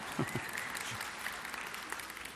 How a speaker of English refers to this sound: Can you clap? That's pretty impressive, all right? Wow.